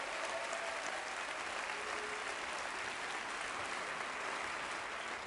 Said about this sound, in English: Give a round of applause for People's Grocery, West Oakland. Doing it.